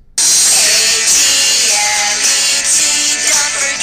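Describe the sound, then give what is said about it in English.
A helicopter roars steadily overhead, a loud, constant whirring hiss with a high-pitched mechanical whine that cuts in abruptly and holds for several seconds without letting up. “Helicopter. All right, we're back. You hear that?”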